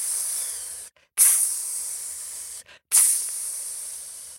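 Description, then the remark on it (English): Three long, loud snake-like hisses, separated by two brief pauses, likely made by a voice imitating a snake. Each hiss is breathy and steady, and fades slightly toward its end. “And out of the waters came the snake. Tss.”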